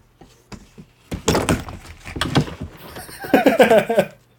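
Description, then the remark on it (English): Someone tumbles out of a chair: a burst of heavy thumps and clattering furniture, loud, followed by a strained, groaning vocal sound as the commotion settles. “It annoyed you so much that you fell out of your chair.”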